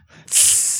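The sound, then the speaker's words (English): A voice imitates a spray bottle with a single sharp, breathy hiss that starts abruptly and holds steady for about half a second, fairly loud, with no talking. “Maybe he gets a little spray bottle on his face.”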